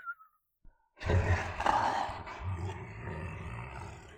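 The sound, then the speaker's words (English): A deep, rumbling growl made by someone asleep swells up abruptly after a brief quiet, sustained and gravelly like a beastly snarl, rolling on loudly for several seconds with rough, throaty texture. “You gotta admit, the scary sleep demon noises are pretty adorable.”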